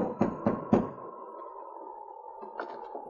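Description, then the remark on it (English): Three firm, evenly spaced knocks on the wooden back door of a general store, made by two Mounties in the darkness of an almost deserted town. A steady hum lingers afterward, with a couple of faint, softer taps near the end. “To avoid attracting attention, they halted their teams in the darkness behind the general store and knocked on the back door.”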